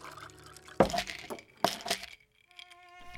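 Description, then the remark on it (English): Water is poured into a glass after two sharp knocks, with a faint ringing tone as the glass fills. No one speaks. “You have a glass of water?”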